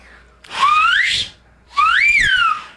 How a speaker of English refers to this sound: But I think the reason why you're so good at it is because you're naturally loud. So of course you're going to be able to whistle loud. I've got good fingers too. I got big hands.